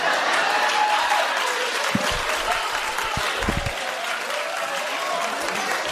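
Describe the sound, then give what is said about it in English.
Sparse, light applause from an audience, a scattering of claps spread across several seconds with a steady murmur of room noise underneath and no one speaking. “You hear those claps were light.”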